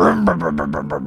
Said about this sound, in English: "I'll show you," said Tiger Power, as he turned the car on.